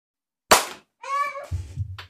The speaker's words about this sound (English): All right, let's clap.